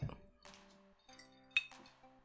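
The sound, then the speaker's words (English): Several glasses clink together in a toast, a few bright ringing taps in quick succession, each leaving a short sustained chime, with no talking. “Let's drink to that. Those boring ooh, questions. Like question. What the fuck? Cheers.”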